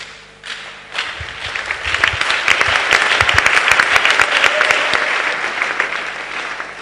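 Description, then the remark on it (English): An audience breaks into sustained applause, many hands clapping in a dense, steady wash that swells after a soft start and holds loud for several seconds, with no voices on top. “I don't know why you are clapping”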